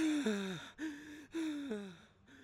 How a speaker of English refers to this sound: He's breathing heavily.